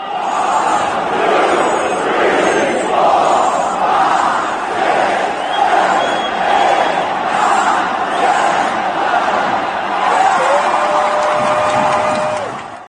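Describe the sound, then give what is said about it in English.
A loud basketball arena crowd roars continuously, a dense wall of cheering voices that swells and surges for the whole stretch, with a thin sustained whistle-like tone rising near the end. “So yeah, I can't even imagine being like in the actual crowd where it's just all around you.”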